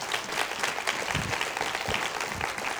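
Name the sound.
audience hand clap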